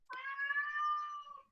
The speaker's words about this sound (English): I heard that. There's the cat orcs. Objecting. That's my familiar.